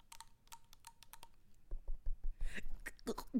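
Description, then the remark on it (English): Fingers tap rapidly on a brand-new, just-opened bottle of carbonated drink, a quick run of about ten sharp, light clicks, followed by people talking over faint rustling. “Wait, tap your fingers on the bottle.”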